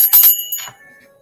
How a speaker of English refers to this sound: Hey, Sharita Michelle, thank you for the bell.